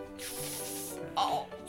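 A steady, bright hiss of water sprayed from a hose into incisions during a live stage skit runs through the whole moment, swelling briefly louder toward the end. No one speaks over it.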